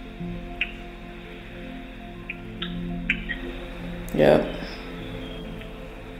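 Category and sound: nature, rain dripping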